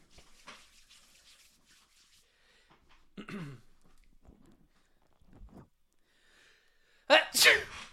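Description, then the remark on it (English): After several seconds of quiet shuffling and soft breathy noises, a person lets out one loud fake sneeze, a sharp two-part burst right at the end. “Yeah, and I can do a good fake sneeze.”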